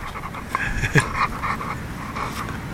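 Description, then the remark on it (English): A dog pants steadily, quick breathy huffs repeating with a brief whimpery yip near the middle, no one speaking. “You are a super good dog.”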